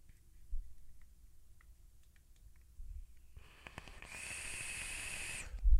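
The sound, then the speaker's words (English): A soft airy hiss builds up, then turns into a steady, high-pitched whistle with a bright overtone from a vape mod, holding for about a second and a half before cutting off with a thump. “And then it whistles.”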